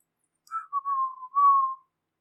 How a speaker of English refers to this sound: Whistling as she's mopping.